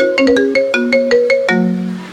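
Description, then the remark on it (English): Siri, asked for a melody, plays a bright electronic ringtone melody from a phone at Decibel, a quick run of about eight plucky synth notes stepping through a tune before a final sustained tone rings out and fades. “Hey Siri. Could you give me a melody? Okay, here's a melody you might like.”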